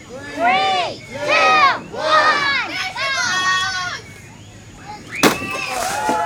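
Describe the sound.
A crowd of voices shouts and cheers, then a single sharp, loud thud-crack of a pumpkin being smashed cuts through, followed by more excited voices.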